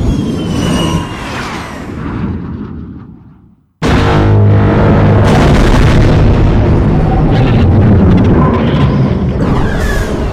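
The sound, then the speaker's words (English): A rumbling passage fades to a brief silence, then a seismic charge explosion in an asteroid field hits abruptly: a massive boom with a deep, twangy ringing like a struck cello string, sustained loudly to the end. “when they're throwing out those seismic detonators, and the way they deal with the audio with those explosions sounds like the striking of a cello string, and that's just so cool.”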